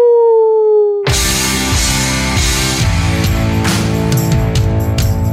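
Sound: hounds howling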